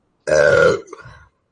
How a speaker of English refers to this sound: I'm not bored, I'm just burping.